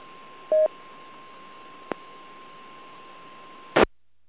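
A single short DTMF touch-tone beep of amateur radio autopatch dialing sounds over a hissy radio channel with a faint steady tone beneath, followed by a small click and then a brief burst of squelch noise before the signal drops out.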